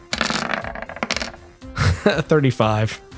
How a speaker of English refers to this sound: Hey, rolled a 12 on the dice here, and you got a 35.